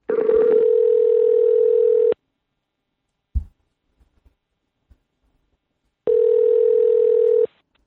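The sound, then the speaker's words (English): A telephone ringing tone sounds through the line: two long, steady, mid-pitched buzzy tones about two seconds each, separated by a quiet pause with a few soft clicks. No one speaks. A phone call being placed to a woman. “Let's give her a buzz.”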